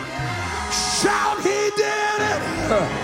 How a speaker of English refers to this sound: Glory! Hallelujah! Shout, he did it!